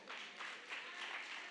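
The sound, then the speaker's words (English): An audience claps in agreement with the speaker during a sermon, in a steady, dense wash of overlapping hand claps, fairly loud and continuous throughout, with no voices standing out. “I see some of you clapping.”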